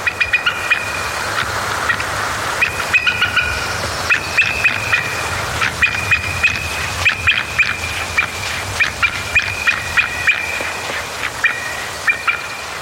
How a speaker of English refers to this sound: What we're hearing now is the chatter call of an adult bald eagle made when an individual, either another bird or a human, approaches the nest site. It's kind of a threat or a territorial call.